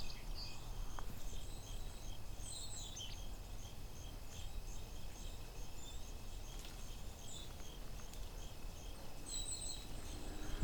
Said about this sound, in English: There's a golden crown kinglet, a triple ring.